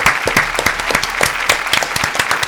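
A small group of three people clapping together, a loud, brisk patter of overlapping claps with no steady shared rhythm and no voices over it.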